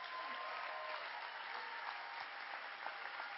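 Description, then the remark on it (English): An audience at a church service claps steadily, a dense, continuous wash of many hands at once, sustained throughout with no voices standing out. “If you're going to clap, give God a big hand clap.”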